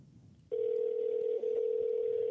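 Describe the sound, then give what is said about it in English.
After a short stretch of low background noise, a steady electronic telephone ring tone begins and holds continuously, loud, like an outgoing call ringing out on the line. “He better answer the goddamn phone, this master son of a bitch.”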